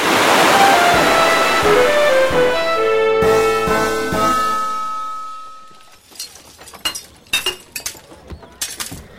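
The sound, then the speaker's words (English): Loud rushing floodwater of a river flooding a city roars for about six seconds, mixed with bright clinking, glassy tones, then it drops away to sparse, scattered clicks and splashes. “The river is flooding the city!”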